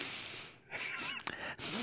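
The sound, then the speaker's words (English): A close, breathy sniff right against the microphone, a couple of short airy inhalations with a brief sharp burst in the middle, no talking. “What the fuck did you just sniff the mic for?”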